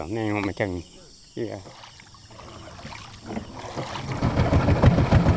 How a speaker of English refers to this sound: steers a wooden outboard down his canal toward Gaung River, cutting through water brown from the tannins in the peat.